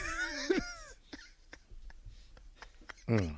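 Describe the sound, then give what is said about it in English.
One sharp, explosive sneeze bursts out right after a brief voiced sound, followed by quiet clicks and rustles before a voice speaks again. “Bless you.”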